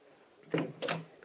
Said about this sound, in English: When there was a knock on the door, I answered.